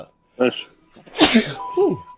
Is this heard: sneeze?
yes